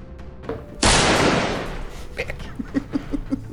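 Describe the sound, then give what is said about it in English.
A single loud gunshot sound effect cracks sharply, its blast trailing off over about a second, followed by a few faint, quick knocks. “That shot went off right when he dropped his die.”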